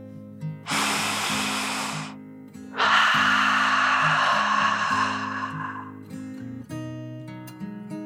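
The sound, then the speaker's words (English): Two long, airy breaths, a deep 'dragon breath' with a slow inhale followed by a longer hissing exhale, sound clearly over soft, steady background music. “The two friends then took another deep dragon breath, in and out.”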